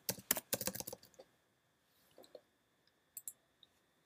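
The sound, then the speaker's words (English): Typing on a computer keyboard while pulling up Genesis 1 to read a verse: a quick flurry of clattering keystrokes in the first second, then a few scattered, softer taps after a pause. No voices. “I'm trying to pull up Genesis 1 here so I can read the verse, and you'll probably hear me typing.”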